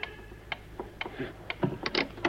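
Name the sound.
clock ticking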